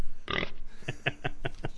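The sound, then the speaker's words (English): A short, harsh pig squeal sound effect bursts out first, followed by a quick run of five rhythmic grunting snorts, fairly loud with no talking. “So anyhow, that's a rant, so give that a little pig squirrel or whatever.”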